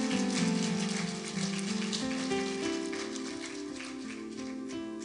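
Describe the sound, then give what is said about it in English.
An audience claps at the preacher's request during a sermon, in a dense, steady wash of applause lasting about five seconds, with sustained low keyboard chords shifting underneath and no voices. “Clap, let me know if you're catching this.”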